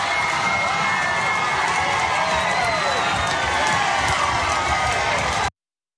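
A large crowd cheers and shouts wildly, a loud, dense roar of many voices that keeps up steadily for about five seconds before cutting off abruptly.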